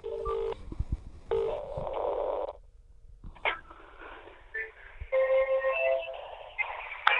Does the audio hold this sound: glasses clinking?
no